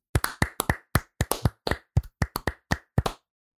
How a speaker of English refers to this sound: And as we do at the end of every bracket, we are going to clap it out.